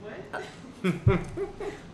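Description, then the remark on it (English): A short, low burp pops out amid a few brief voiced sounds, over a quiet background. “I just burped.”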